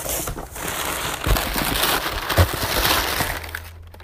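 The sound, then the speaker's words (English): A pair of purple scissors cuts open a package: a steady, dense crinkle and rustle of packaging with a couple of sharper snips or clicks partway through, no voices. “I love having my own pair of purple scissors in my room so I can just open all of my packages.”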